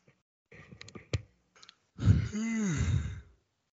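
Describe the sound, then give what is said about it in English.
A person lets out a long, drawn-out yawn, its voiced pitch sliding up and then back down, preceded by a few soft clicks and shuffling noises. “Oh, come on now, don't start yawning.”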